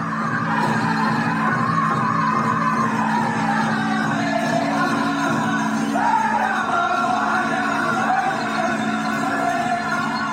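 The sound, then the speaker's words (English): At an indoor powwow on the White Earth Nation in northern Minnesota, a powwow drum pounds a steady, even beat while a group of voices sings a loud, high, wavering chant over it, continuous throughout. “The familiar heartbeat of the powwow drum, the sound he grew up with, had finally returned.”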